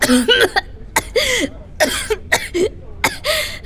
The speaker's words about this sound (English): You all right? You've been coughing all morning.